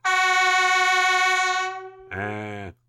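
A Super Echo novelty air horn blares a long, bright, buzzy note for about two seconds, then after a brief gap gives a shorter, lower, rougher blast. Loud, with no talking.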